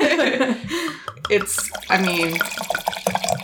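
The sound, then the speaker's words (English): Cupcake Moscato wine glugs and trickles as a glass is topped off. It is a bright splashing burst amid overlapping voices talking throughout. “Let me just top it off a little bit.”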